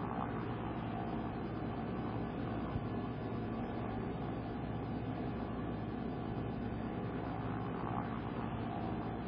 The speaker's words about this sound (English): You hear the pilots shouting loudly over the sound of the airplane about how their compasses are behaving erratically. And how they have to fly by sight and solar compass instead.